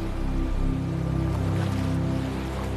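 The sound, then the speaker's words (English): A steady, continuous wash of ocean surf rolls along at moderate volume onto a shore, waves washing up over the feet and gently receding back into the ocean, with a soft low drone humming beneath it and no voices. “around your feet as the waves come up to meet you and gently receding back into the ocean as the waves go back to collect more for you.”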